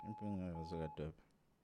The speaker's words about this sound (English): I hope it's a direct call. That sounds like a WhatsApp call. It's a WhatsApp call, dog.